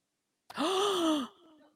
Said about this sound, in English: just gasp.